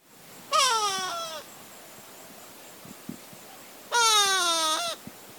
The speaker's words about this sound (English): The go-away bird is native to the tropics of Africa. It's named that because it makes a nasally call that sounds like it's saying go away.